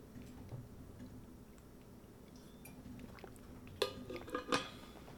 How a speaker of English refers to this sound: Well, I take a sip of water.